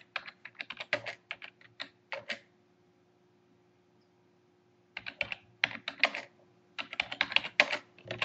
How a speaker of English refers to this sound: Doing that mail thing again, typing and trying to talk at the same time, and it just doesn't work.